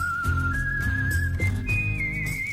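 Someone whistles a short, steady tune as intro music for Formula One news, the pure tone stepping up in pitch in a few held notes over a low, continuous musical bed, clear with no talking.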